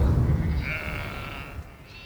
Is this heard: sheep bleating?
yes